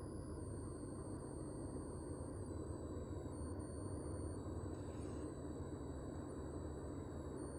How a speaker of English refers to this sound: It's a plane, I can see it. A plane and a train.